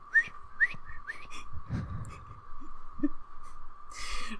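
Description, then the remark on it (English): A person whistles a slow, eerie melody imitating a ghost, with sliding notes and a sustained wavering tone, fairly quiet, with a few soft breathy noises in between. “But he whistled when he went.”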